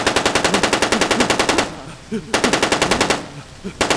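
Loud bursts of rapid automatic gunfire: a long rattling volley, a short pause, a second burst, then another begins at the end. Faint voices sound in the gaps.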